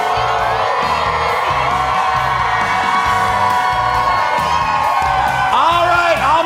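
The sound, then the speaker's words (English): A large crowd of Philadelphia Eagles and Kansas City Chiefs fans at a Super Bowl 57 pregame party cheers and shouts loudly and continuously, with whoops and yells rising over a steady roar and a thumping low beat pulsing underneath. “This party has started right now, everybody. Make some noise.”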